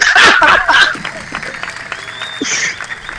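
A short burst of applause mixed with chuckling in response to a joke, loud for about the first second, then thinning into quieter scattered clapping and murmur.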